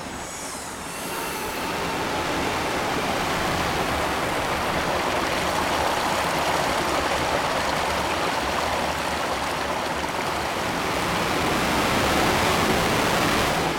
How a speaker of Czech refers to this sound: No, tak s pitnou vodou to je takový ošemetný, protože my máme takhle tamhle, bohužel teda na tom pozemku paní sousedky, takový dvě skruže, do toho máš nacpanou rouru, aby ti z toho potoka vlastně tekla ta voda do těch skruží a celý to vede prostě